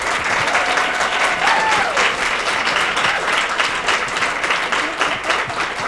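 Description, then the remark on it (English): Sustained audience applause for an event's crew fills the whole stretch, a dense, steady patter of many hands clapping at an even, loud level without pause, with a faint tonal whistle briefly rising above it. “So now let's direct the applause to this incredible, incredible crew of people.”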